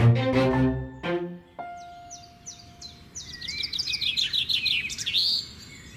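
birdsong

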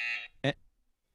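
quiz game buzzer pressed

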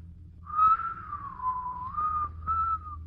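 person whistling a tune

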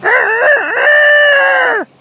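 rooster crowing

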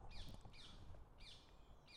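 bird calling

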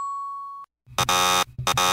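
buzzer sounding

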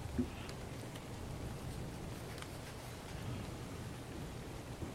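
pouring rain

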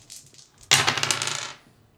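dice being rolled

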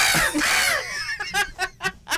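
bird sound effect

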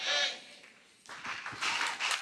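audience applause

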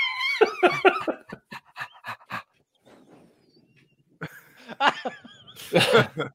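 dog

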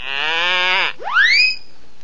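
goat bleating

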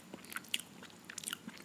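lip smacking

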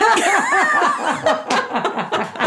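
hand slapping a knee

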